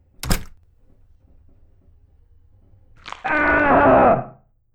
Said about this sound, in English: I think those screams are going to haunt me forever, but yeah, peachy.